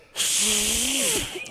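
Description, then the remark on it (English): A steady, breathy rush of air blown into a clenched fist, lasting about a second, with a faint hollow, whistly tone wavering underneath before it trails off. “Another thing you can do, clench your fist and blow into your fingers.”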